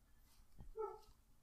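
A single short, faint dog bark, preceded by a soft low thump, with no voices.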